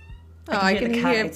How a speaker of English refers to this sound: I can hear the cat. I'm sorry, you can hear that. It's Mad. She's very vocal. She's just a vocal cat. She is a vocal cat.